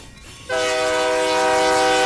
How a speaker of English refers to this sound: I don't know how you put up with those trains.